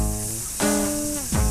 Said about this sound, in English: This theme song means we got a snake story. Watch out.